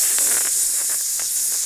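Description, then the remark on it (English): Steady, bright sizzling hiss with scattered crackles and pops, like a steak frying on a hot grill, loud and without any voices. “And yeah, then sizzle flames. It's like a steak cooking.”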